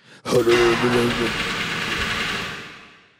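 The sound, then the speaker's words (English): A voice mimics a car engine struggling and failing to start, a fairly loud sputtering, grinding rumble that lasts about three seconds before fading out. “But if you try it, the car start. So try again.”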